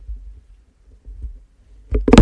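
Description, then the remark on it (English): A microphone is accidentally knocked: low muffled rumbling, then a sharp thump and a louder, longer burst of scraping handling noise at the end. No voices. “Oh, I just knocked my microphone.”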